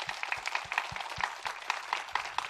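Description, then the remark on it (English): An audience at a church holiday event applauds steadily to thank the people who made the event happen, many hands clapping in a dense, continuous patter with a few louder claps standing out at a quick, regular rhythm. “So can we just give it up for all of these people?”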